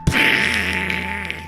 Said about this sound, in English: Luckily, at that moment, a spaceship crashed onto his farm.